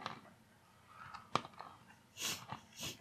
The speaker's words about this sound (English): Again, there's that crunch. Well. The chocolate keeps it from being too dry.